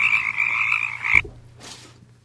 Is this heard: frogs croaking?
yes